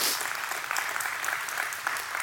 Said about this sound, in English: Amen? Amen. Another golf clap. Not impressed.